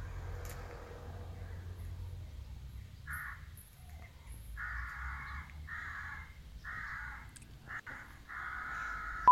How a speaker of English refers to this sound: Wonder how they recorded that noise. Do you think they just tortured a crow for a while?